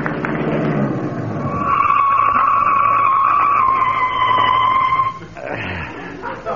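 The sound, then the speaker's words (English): A car pulls up with a long, loud, high-pitched brake squeal that holds steady for a few seconds before cutting off as the vehicle stops, followed by a brief engine rumble. “Gotta get them brakes fixed.”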